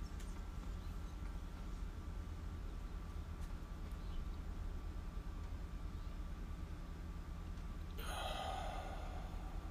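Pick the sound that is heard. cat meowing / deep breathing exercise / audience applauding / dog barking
deep breathing exercise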